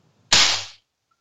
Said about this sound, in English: I clapped.